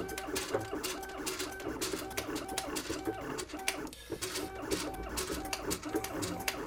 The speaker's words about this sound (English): Now I'm just going to simply start typing, and I think I'll just go ahead and start typing in contracted Braille. What should I type? Welcome to Cosmo.